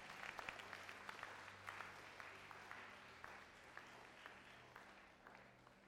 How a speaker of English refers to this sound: Give Jesus a mighty clap of praise. Amen.